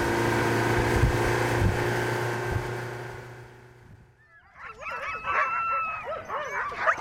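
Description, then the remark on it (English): A steady motor drone fades out, then teams of huskies tethered to squat wooden doghouses on the island village of Shishmaref break into restless barking, yipping and howling in the midday sun, several dogs overlapping. “Back on the island, teams of huskies bark restlessly in the midday sun, tethered to squat wooden doghouses.”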